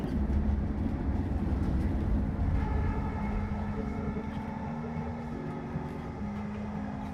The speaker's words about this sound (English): The dream train goes in a tunnel under the ocean.